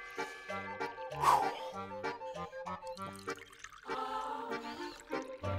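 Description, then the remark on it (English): Water is poured for a drink during a water break, a run of hollow glugging and splashing pulses that shifts in pitch over several seconds, with no one talking. “Yeah, I'm thirsty. It's time for a water break.”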